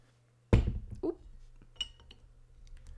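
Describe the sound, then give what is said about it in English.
A sharp, loud crack of a beer bottle being opened, followed by a rattling clatter and a few lighter glass clinks, with no talking. “Should we open our beer? I was just about to say that, yeah. All right, let's get her cracking.”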